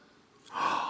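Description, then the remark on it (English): A single sharp intake of breath from an audience member, an audible gasp that swells suddenly after a quiet moment and holds briefly, breathy and hissy, with no talking. “I got a gasp over here.”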